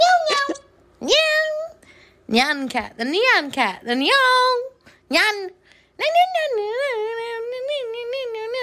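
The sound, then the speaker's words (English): A human voice mimics a cat's meow, imitating Nyan Cat, in a string of loud, nasal yowls with rising and falling pitch, ending in a long drawn-out wail. “Nyan cat, the nyan.”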